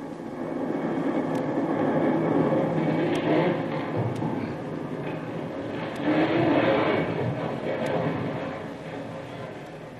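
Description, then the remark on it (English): A deep, sustained rumbling roar rolls on for the whole stretch, swelling louder twice before slowly fading, like the lingering reverberations of a tremendous explosion of a castle's powder magazine. “Just as Jungle Jim reports back to the camp of Captain Swain, who is in command of the landing force of Marines, the very earth trembles with the force of a tremendous explosion whose reverberations can still be heard.”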